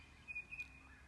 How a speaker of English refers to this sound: But it's 5:27 in the morning here now. And the sun's not up in the sky, but the skies are really lovely light blue. And listen to that bird song.